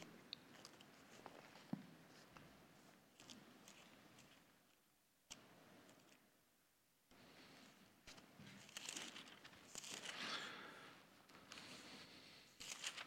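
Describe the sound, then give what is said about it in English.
Soft papery rustles and flicks as Bible pages are turned while searching for a scripture, coming in irregular bursts over a quiet background, louder toward the end, with no one speaking. “Don't hear pages turning much anymore.”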